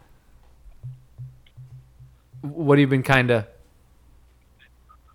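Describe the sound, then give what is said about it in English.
A phone line breaking up from hurricane interference with the radio waves: faint low buzzing pulses, then a brief, garbled burst of a voice that cuts off abruptly into near-silence, like a call signal dropping out. “You're breaking up on me.”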